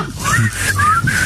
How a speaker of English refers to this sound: Are you trying to whistle? I'm trying to do the whistle.